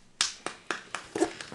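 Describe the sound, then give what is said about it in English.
A single person claps their hands about six times in a steady, moderately quick rhythm, each clap sharp, with no talking. The person is applauding the players at the end of a game session. “I will applaud you all because I enjoyed that very much.”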